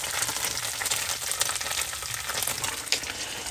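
A steady, crackling sizzle of plant-based eggs frying and burning in a hot pan, with dense popping and spitting throughout and occasional louder crackles, fairly loud with no talking.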